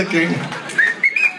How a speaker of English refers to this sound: Take control of your whistling.